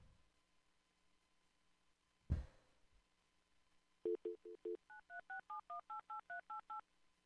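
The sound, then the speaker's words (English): A sharp clack, like a receiver being picked up, then a quick run of about fourteen touch-tone dialing beeps, short and evenly spaced, loud with no voices, as a telephone call is dialed. “All I got was a ring.”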